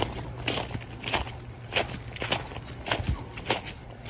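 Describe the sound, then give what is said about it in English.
Steady footsteps crunch along a signposted path after going through a door, on the way to a party, in an even walking rhythm, each step a soft, gritty scuff over a low constant hum, with no voices. “Okay, I went through the door. Follow the signs.”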